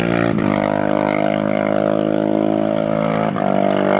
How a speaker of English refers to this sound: Yes, that bike is so loud, I lost my train of thought. Sure. Yes, that guy's going. I think that guy cut his exhaust pipe or something.